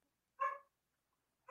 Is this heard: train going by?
no